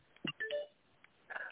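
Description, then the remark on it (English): A quick cluster of electronic phone message notification beeps and tones as people send messages, a few short bleeps in succession with a brief pause before a final chirp, moderately loud, with no talking. “Yeah, I just really was a, what is going on with my phone here?”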